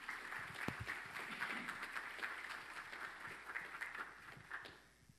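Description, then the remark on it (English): A crowd claps steadily for about five seconds, a dense wash of many hands applauding the choir and musicians, before the applause tapers off and fades out at the end. “I think they deserve another round of applause.”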